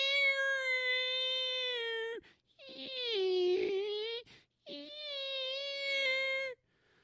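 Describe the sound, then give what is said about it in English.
Whale song: three long, drawn-out tonal calls, each about two seconds, with a rich harmonic moan that bends and wavers in pitch, separated by short silences and heard alone without talk. “How many of you have heard a whale? You know, the whale song”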